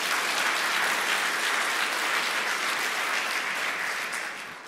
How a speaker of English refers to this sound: We had three people in the first service today give their lives to Christ for the first time. It's amazing. God is still transforming. You can clap for that.